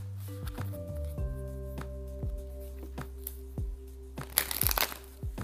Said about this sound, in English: because when I pulled the deck to shuffle, I saw reconciliation try to show itself.